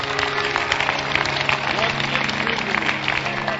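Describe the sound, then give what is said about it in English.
An audience claps steadily throughout, a dense, even patter of many hands at a constant loud level, mixed with crowd murmur and a low steady hum underneath. “He's been clapping.”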